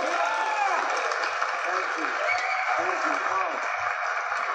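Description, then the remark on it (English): Steady, dense applause from a large audience welcoming a performer to the stage, a continuous wash of clapping with murmured voices and cheers woven through it, holding at an even, loud level throughout. “What an applause.”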